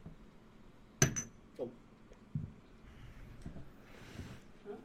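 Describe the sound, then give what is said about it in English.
Glasses clink together once in a toast, a bright ring that quickly fades, followed by a softer second tap, a few dull knocks and low background murmur. “Well, cheers.”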